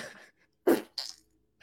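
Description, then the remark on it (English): A person blows a short, loud raspberry with their mouth, imitating a fart, followed by a quick breathy hiss, with quiet moments around it. “you make a fart noise with your mouth”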